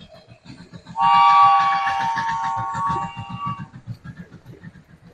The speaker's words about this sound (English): The train, hey.